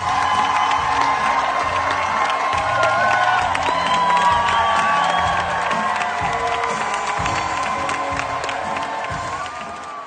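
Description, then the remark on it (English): A sold-out Broadway opening-night crowd gives a standing ovation, one of seven, cheering and applauding loudly and continuously, with whoops and shouts rising over dense clapping for the full ten seconds before easing slightly at the end. “Yeah, so in case anyone's wondering, that's what 7 standing ovations sounds like.”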